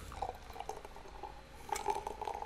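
A cocktail made with egg white is single-strained from a shaker tin into a glass, a steady pour of liquid splashing and gurgling that swells louder near the end, with no one talking.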